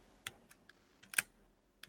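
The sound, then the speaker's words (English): The film advance lever on an early dual-stroke Leica M3 being wound: a quiet series of six crisp mechanical clicks at irregular intervals, one sharper than the rest, with no voices. “this, which is a Leica M3 dual stroke early version. So it doesn't even have an eighth of a second. It has a fifth of a second.”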